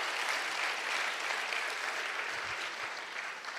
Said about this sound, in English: Welcome, everybody. So blessed that you're here. Give yourself a round of applause because you are amazing.